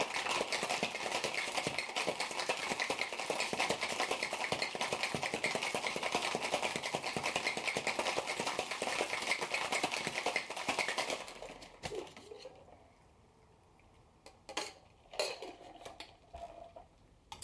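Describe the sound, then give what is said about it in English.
A cocktail shaker holding a Havana Hustle cocktail with habanero and citrus is rattled hard for about eleven seconds, ice churning in a dense, steady clatter, then it stops and a few sharp glassy clinks and taps follow. “Give this guy a little shake.”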